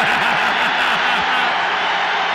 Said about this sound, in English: And the crowd roars. The crowd went wild.